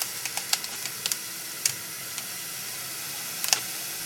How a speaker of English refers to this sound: Okay, so now, because we want to get the temperature of the sweet potatoes down. All right, so I'm just going to dump these in. You can see that they're really done. And I'm going to just pour some cold water over them.